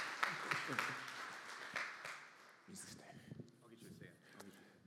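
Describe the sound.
An audience claps in a dense, crackling burst of applause that thins out after a couple of seconds, with voices and scattered claps continuing underneath as it fades.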